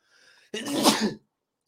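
A single loud sneeze bursts out after a faint intake of breath, sharp, lasting under a second before silence.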